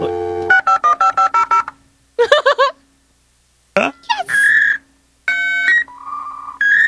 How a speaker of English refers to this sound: You would literally just have to wait for the modem to connect.